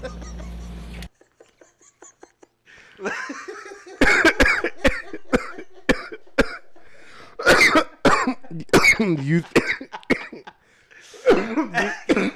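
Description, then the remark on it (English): A prolonged coughing fit after smoking cannabis: repeated harsh, hacking coughs in rapid bursts, loud, with brief gasps and throat-clearing between them and no spoken words. “These is chronic coughs. These is the bud coughs.”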